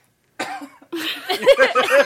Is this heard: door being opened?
no